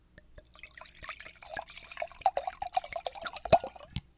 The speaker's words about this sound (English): That probably sounded magnificent. That wasn't pee. That was more wine going into my glass.